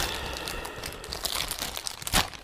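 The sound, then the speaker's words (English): A bag crinkles and rustles as it is opened, a steady stream of crisp, papery crackles with a few sharper crunches toward the end, moderately loud and with no voices. “Not a description of the bag you're holding. Gotcha. Anything but podcast. Hey, dog. Open it.”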